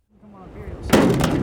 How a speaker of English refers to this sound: has just swung open the door at the top of his 35-foot grain bin.